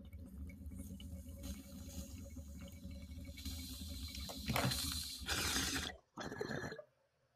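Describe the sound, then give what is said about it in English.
Steady bubbling and gurgling of water through a bong for about six seconds, swelling louder near the end, then a brief second burst before it stops. “I really enjoy having a fatter bong”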